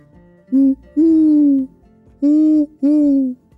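Four owl-like hoots, drawn-out and slightly falling in pitch, come in two close pairs. They are loud, and a human voice imitating an owl produces them, with quiet gaps between.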